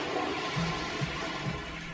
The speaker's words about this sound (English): Hey, what's that sound? Oh no, I think he flushed.